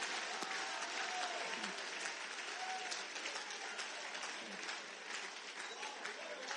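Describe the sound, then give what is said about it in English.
An audience applauds steadily for Adoniram Justice's wife, a dense crackle of many hands clapping at an even level throughout, with faint voices mixed into the applause. “Clap for Adoniram Justice's wife, I tell you.”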